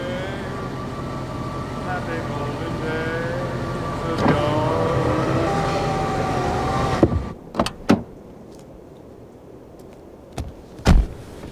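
car engine running

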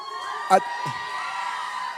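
audience cheering and whooping

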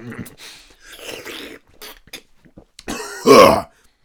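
coughing

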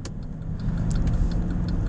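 inside a moving car

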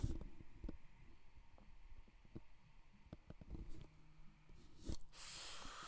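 inhaling

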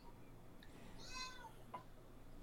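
cat meowing

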